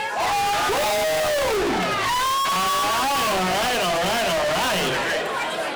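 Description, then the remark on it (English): An audience cheers loudly for their favorite contestant in a cheering contest where the team that cheers loudest wins a trophy, a dense, steady roar of overlapping shouts and shrill, wavering yells that keeps going for about six seconds without a break. “guys, and I also want to encourage you to cheer for your favorite competitor because the team that cheers the loudest for their favorite person wins a trophy.”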